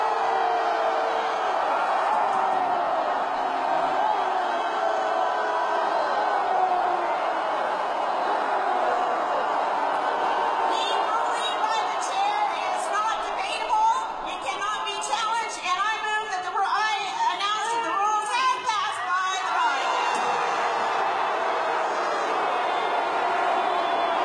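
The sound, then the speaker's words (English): A large crowd roars with sustained, dense noise during a voice vote, a blend of booing and many overlapping shouts of "no", with sharper yelling and whoops rising toward the middle before settling back. “A lot of no's and booing.”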